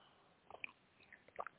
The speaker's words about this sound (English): Anyways, let me, as always, take a little sip here before I start talking some more to all of you who are holding on there.